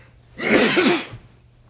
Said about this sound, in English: We wore masks all day. That is not COVID. That is that is just an end of the day sleepy dad sneeze. Oh, bless you.